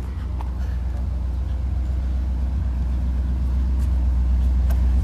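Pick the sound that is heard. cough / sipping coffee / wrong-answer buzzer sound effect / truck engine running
truck engine running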